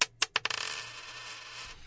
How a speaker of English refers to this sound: And to start it off, as usual, we have the traditional Sound Opinions coin toss. Heads or tails? What do you call it?